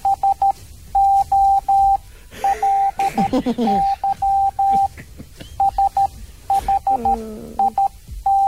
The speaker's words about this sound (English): Okay, that was in Morse code, and trust me, it was true.